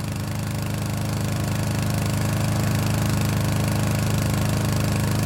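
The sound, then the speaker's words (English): A diesel-powered garage door opener runs continuously, a loud, steady engine drone with a deep, rapid chugging rumble that holds an even pace for several seconds, with no voices. “Then you need the one and only Gus's Diesel Power Garage Door Opener.”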